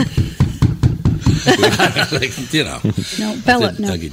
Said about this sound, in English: Bella, it was me. You just freaked out the dog. Bella starts barking because I knock on the table.